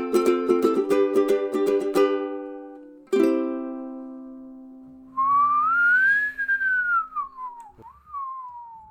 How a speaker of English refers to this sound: Hold up. Sorry, guys. There's a bird in the studio. We got to get this thing.